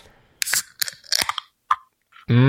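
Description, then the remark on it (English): Sharp metallic clicks and crackling bursts of an East Brothers Beer Company oatmeal stout, from Richmond, California, being opened, with a brief fizzing hiss, followed by a pause and then a voice starting to speak. “I just opened up a delicious East Brothers Beer Company, which is in Richmond, California.”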